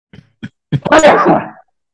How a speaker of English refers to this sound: Whoa. Sorry. That's how I sneeze. If I was a kid, that would have been right in your face.